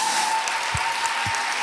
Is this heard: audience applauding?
yes